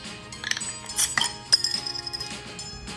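household object, glasses clinking

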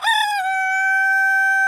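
bird, rooster crowing

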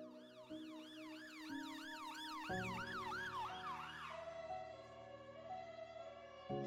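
vehicle, ambulance siren

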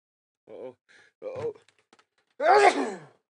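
human body sound, sneeze

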